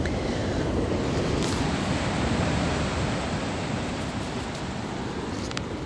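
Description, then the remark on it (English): Steady roar of Pacific Ocean surf washing onto the shore at Oceanside, California, a dense continuous wash of breaking waves with no voices, slight swells in intensity over a few seconds. “coming to you from the Pacific Ocean in Oceanside, California.”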